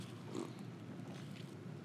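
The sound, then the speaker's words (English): A quiet sip of cream soda: a brief, wet slurping draw of liquid with a soft snorting quality, followed by faint breathy noise. No one speaks. “Sorry, I needed to sip my cream soda.”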